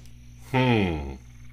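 One low, buzzy croak from a toad opening its mouth, lasting about half a second and loud, rising out of a steady background hum before it fades away.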